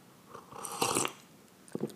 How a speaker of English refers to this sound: Matter of fact, taking a sip right now.